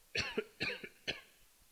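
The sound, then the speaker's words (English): Three soft, restrained coughs in quick succession from a person recovering from surgery, each a short breathy burst with a slight throaty catch, spaced about half a second apart. “Excuse me, I have to try to cough here.”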